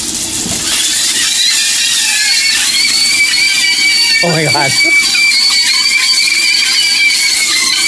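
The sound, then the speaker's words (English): Sausages frying in a pan: a steady, loud sizzling hiss with thin, wavering high-pitched squeals running through it like people screaming. A person exclaims briefly partway through. “So this is a flying sausage sounding like screaming people.”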